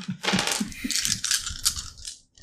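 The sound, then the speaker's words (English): Six dice are rolled for a dexterity plus athletics check, clattering and tumbling across a hard surface, a dense rattling burst of clicks that carries on for a couple of seconds before settling, fairly loud. “It's 6 dice. Thanks. I'm gonna roll for this roll, okay?”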